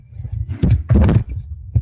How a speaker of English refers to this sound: knocked over his microphone. It totally obscured what you were saying.